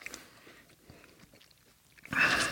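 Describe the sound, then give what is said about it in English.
Close-up chewing of a burger, soft wet mouth sounds and small crunches near the microphone, then a louder burst of chewing at the end. No one speaks. “So I'm doing that chewing into the thing, that's annoying.”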